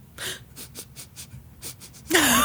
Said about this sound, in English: What are you sniffing?